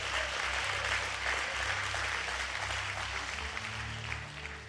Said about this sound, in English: Would you give the Lord a big round of applause just for his word?